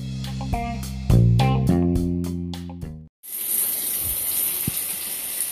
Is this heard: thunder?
no